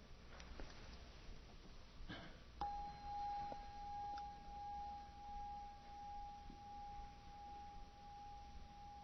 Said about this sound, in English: What do you hear? I hear a bell. We don't hear a bell. Bell is a concept. Bell is an idea. Bell is a word. The ear does not hear words. Sound. There's a certain sound. We're hearing the sound. There's a certain vibration to that.